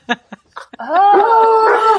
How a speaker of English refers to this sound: Oh, Terry's dogs like to try to be guests on the podcast. So cute.